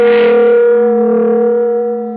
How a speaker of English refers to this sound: For an instant, I didn't know what had happened. The shock had jarred the room like it was built on a plate of jello. Then I remembered we were directly under the huge bell of Dorchester Towers, Cairo's version of the Big Ben.